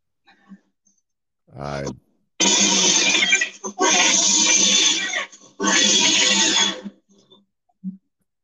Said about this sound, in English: It's happening right now. Listen. You don't hear the growling? I do.